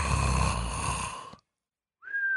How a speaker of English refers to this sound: Or is it softer, like the whistler? This refers to the snoring that includes whistling sounds, often due to a particularly narrow nasal passage or blockage.